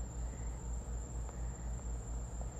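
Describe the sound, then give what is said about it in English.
Steady, high-pitched cricket chirping at 11:22 p.m., heard through a window over a residential neighborhood, a continuous shrill trill over a low ambient rumble, with insects singing. “And I also hear the crickets.”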